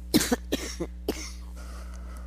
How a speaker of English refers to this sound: Made myself coughing now.